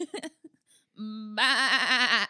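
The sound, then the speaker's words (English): A goat lets out a single loud, wavering bleat lasting about a second, starting as a steady cry and breaking into a quavering tremble, with a few brief vocal sounds just before it. “These goats look so hosy and cute.”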